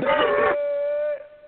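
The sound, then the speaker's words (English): A single loud, shrill victory screech sound bite, raspy and harsh at first, then settling into a steady held high tone before cutting off after about a second and a half. “Victory screech!”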